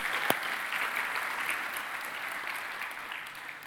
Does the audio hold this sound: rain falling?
no